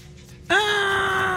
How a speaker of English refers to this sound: They say you can still hear the echoes of maid's screams after she found the Borden's dead bodies.